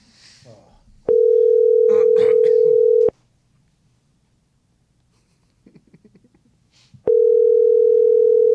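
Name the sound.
telephone ringing tone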